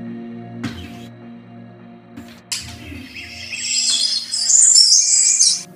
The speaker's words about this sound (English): This is the bird's alarm I'm talking about.